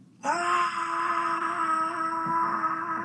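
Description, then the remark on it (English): A horror-movie scream erupts suddenly and holds as one long, loud, steady wail at a fairly constant pitch, with no one talking over it. “But that scream is scary also.”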